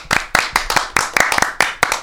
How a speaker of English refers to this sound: So let's give a round of applause to our friends